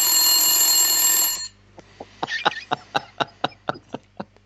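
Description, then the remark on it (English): A loud, rapid mechanical egg timer bell rings continuously for just over a second, then cuts off, leaving a series of sharp, evenly spaced ticking clicks. No one speaks. “That's the egg timer for now.”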